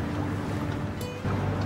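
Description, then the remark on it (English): A steady low engine rumble of a boat on the River Thames during a wedding, with a continuous wash and lapping underneath and a brief higher whine midway; no one speaks. “Carl and his beautiful bride Susan are getting married on the River Thames.”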